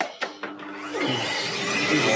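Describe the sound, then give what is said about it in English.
A couple of quick clicks, then a vacuum cleaner starts up, its motor whine climbing into a steady, loud rushing roar that fills the rest of the moment. “Is that a Hoover?”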